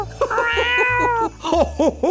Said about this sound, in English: They're called Pippin and Daisy, and they send a big meow to Santa's cat, Snowball, who must be nearly as old as Santa himself, Santa.